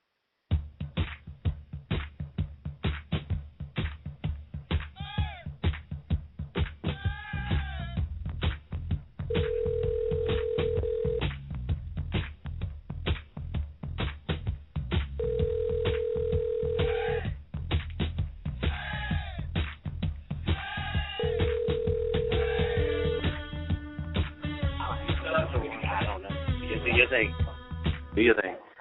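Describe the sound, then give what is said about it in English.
A narrow, muffled phone line carries faint voices, then a steady electronic tone sounds three times at even intervals, like a dropped call returning to a dial tone, as a call from a valley in East San Diego cuts off because of poor phone reception. “I don't know why it's cutting off, but we're in this valley, and I think the phone reception is terrible here if it keeps cutting off.”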